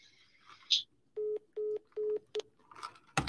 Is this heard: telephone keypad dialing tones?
yes